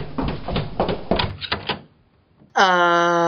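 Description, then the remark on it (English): A break room door is opened after a stretch of rattling, bumping handling noise; a brief pause follows, then a loud, steady tonal sound suddenly pours in as it swings open. “Close the door!”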